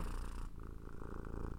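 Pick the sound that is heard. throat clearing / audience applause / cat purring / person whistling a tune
cat purring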